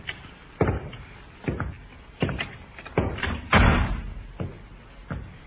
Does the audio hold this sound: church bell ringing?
no